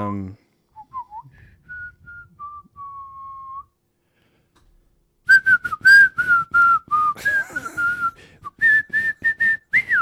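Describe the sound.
A person whistles a light, wandering tune like game show thinking music, starting with sparse notes, pausing, then resuming busier and more continuous whistling with some breathy noise underneath.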